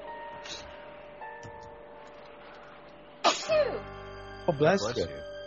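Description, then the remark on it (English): Two sharp, loud sneezes a little over a second apart, each a sudden noisy burst with a voiced tail, over a steady low hum with faint ticking. “Oh, bless you. Bless you again.”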